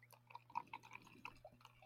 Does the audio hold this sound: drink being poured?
yes